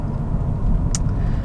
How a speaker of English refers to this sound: But I understand that he's driving while he does this podcast, and that his attention is best kept on the road so that he can upload another episode next week rather than be another driving fatality statistic.